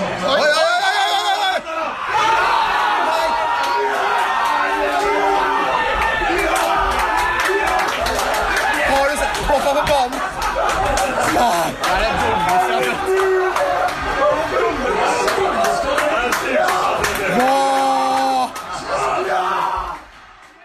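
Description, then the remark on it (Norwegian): A huge football stadium crowd erupts in a sustained roar of cheering, yelling and whooping after a winning goal that decides the match after the last minute of play, loud and dense throughout before dropping off at the very end. “Ja, og sånn høres det altså ut når kampen avgjøres I etter siste spillminutt.”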